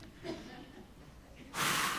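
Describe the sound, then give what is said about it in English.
A sharp, forceful exhale near the end, demonstrating Jesus breathing on his disciples, a loud breathy rush of air that holds for about half a second after a quieter stretch of faint breathing. “Then he breathed on them and said, "Receive the Holy Spirit."”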